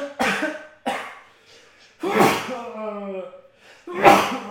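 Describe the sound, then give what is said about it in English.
Several sharp, explosive sneezes burst out, four in quick succession, one trailing into a drawn-out voiced exhale before the last loud burst. “Sneeze.”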